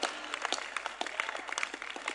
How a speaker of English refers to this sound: Your clapping is, I mean, as if you are feeling, are you feeling sick? Are you feeling tired?